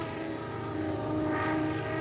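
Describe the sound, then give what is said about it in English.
A loud, steady droning roar of a burning airplane in flight after being hit, its rudder non-functional, its engine hum continuous for the whole moment, swelling slightly toward the end, with no voices. “Worry about that after we're off the burning plane.”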